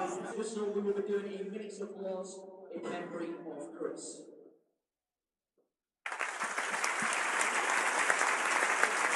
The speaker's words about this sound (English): Minutes of applause here for Bradford player, sadly passed away recently. Been very well observed from the Millwall end as well as the home ends, as you'd expect.